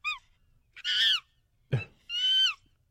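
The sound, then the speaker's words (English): A voice imitates how a woman snores while sleeping, with a series of loud, nasal, goose-like honks: a short squawk, a long drawn honk, a sharp throaty snort, then another long honk, with silence between. “That's how she snores.”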